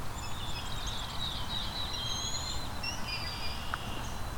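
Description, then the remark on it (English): Thin, high whistling notes from a brown-headed cowbird drift in and out, somewhat faint over a steady outdoor hiss, with a brief sharp click near the end. “We've got a cowbird here.”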